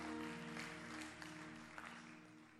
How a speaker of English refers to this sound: Clap your hands to the Lord, and then you can be seated.